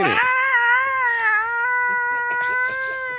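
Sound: voice imitating cats fighting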